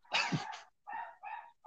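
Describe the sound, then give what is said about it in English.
A dog barks in a quick series of four sharp, loud yelps, the first rougher and longer, the rest shorter and evenly spaced, with no one talking. “There's the dog. My dog didn't like that joke.”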